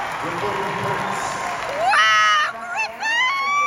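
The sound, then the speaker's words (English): Over a murmuring crowd at a graduation ceremony, a mother suddenly lets out long, loud, high-pitched screams and cheers, recorded on her phone, breaking off briefly before shrieking again with wavering pitch. “screaming for us all in unison”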